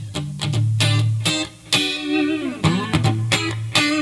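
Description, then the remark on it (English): A clean electric guitar, a PV HP2 played through a Viper switched to its clean setting, plays a loose phrase of picked notes and short chord stabs, with light compression, a gentle chorus shimmer, a faint delay, and a reverb tail. One note bends downward midway. “Has a little compression on it, a little chorus, teeny tiny bit of delay. There's some reverb in there as well.”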